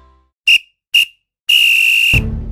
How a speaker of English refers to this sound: Well, there goes the final whistle,